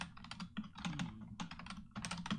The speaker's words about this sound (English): your typing is so loud. I thought it was muted. I'm sorry.